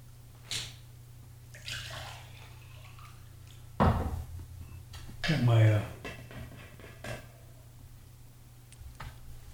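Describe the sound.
Hydrogen sulfur water is poured into a glass, a short gurgling pour with a rising tone, preceded by a solid knock or clink, while a quiet voice murmurs in the background.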